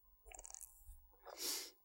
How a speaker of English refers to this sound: So first, got to roll a bunch of dice.